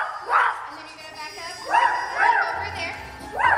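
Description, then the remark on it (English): Shenandoah Elementary School students imitate dogs barking during rehearsals for a production of 101 Dalmatians, several yappy woof bursts rising and falling in pitch, a few in quick succession, clear. “Have Shenandoah Elementary School students gone to the dogs?”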